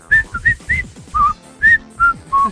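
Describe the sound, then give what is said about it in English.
A person whistles the Super Mario World level 1-1 video game theme, a bouncy string of short, clear pitched notes in a quick, regular rhythm, loud with no talking. “You want Super Mario World 1-1, but you want it in the form of a whistle sensation, I got you.”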